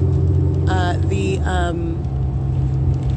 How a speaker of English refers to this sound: That's where the entity's keeping the fake scent in alignment with the bus going northbound now.